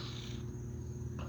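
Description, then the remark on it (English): A thin, steady insect whine hums continuously and fairly quietly, mosquitoes flying around a person with no wind blowing, with a faint higher hiss in the background and no voices. “Now I know I got mosquitoes flying around me.”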